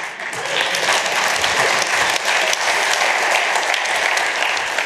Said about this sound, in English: Actually, we have a huge problem with applause, which is very disruptive, and laughter.